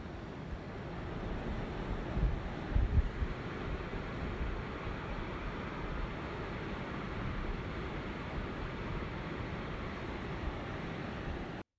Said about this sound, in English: Now, obviously, there's sea and sand. It's a big bay, and there are some rolling waves there. The beach is quite shallow out for a wee while, and then it dives off after some rocks. But yes, it's a big wide bay that's sort of encased with rocks